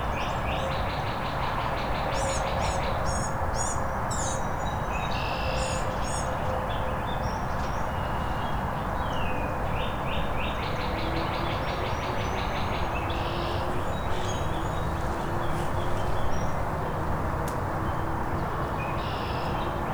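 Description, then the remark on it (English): Songbirds, two cardinals and a ruby-crowned kinglet, sing repeated bright chirps and trills throughout, fairly clear above a steady, loud low rumble like passing rail traffic or wind. “Gnat catcher's making a lot of sounds, but it's probably being drowned out by this cardinal behind me. Oh, two of them now. Now Ruby Crown Kinglet has come to join them.”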